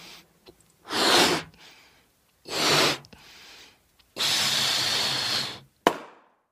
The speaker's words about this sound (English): Uh-oh. Do you know what just happened to my balloon? Yeah, it popped.